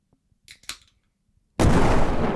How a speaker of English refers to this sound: Ignore that cannon. I was trying to hit the lightning button.